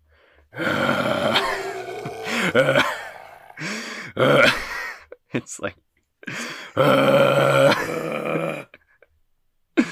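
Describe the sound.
A person briefly speaks, then voices several loud, drawn-out guttural roars and growls in bursts, imitating the roar of a giant crab, with short gaps between them.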